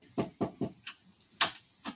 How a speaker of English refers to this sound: A knock on the door.